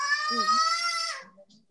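A child lets out a single loud, high-pitched scream lasting about a second, steady and shrill, then cuts off into quieter low murmuring.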